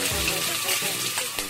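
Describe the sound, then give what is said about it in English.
Food sizzling on a barbecue grill, a steady loud frying hiss with a few sharper crackles and pops breaking through near the end. “The only thing that should be sizzling is the barbecue.”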